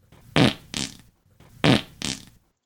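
Two pairs of loud, raspy fart sound effects, each pair a quick double blast with a brief pause between pairs, clear with no talking.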